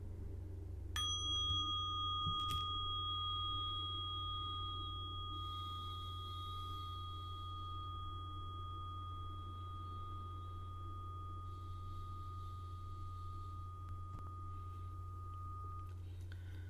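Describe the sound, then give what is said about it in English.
A single strike of a mindfulness bell rings out with a clear, pure tone that sustains and fades slowly for about fifteen seconds over a steady low background hum. “I'll be inviting the bell of mindfulness to slow me down a bit”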